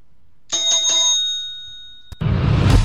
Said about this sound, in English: ring the bell.